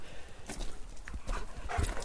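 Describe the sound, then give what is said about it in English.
An excited dog on a walk makes short, restless whimpers and snuffling noises amid scuffing footsteps on a hiking trail near a campsite, with a brief higher whine near the end. “And now I got back to the campsite, let the dog out of the trailer, and I'm taking him for a walk.”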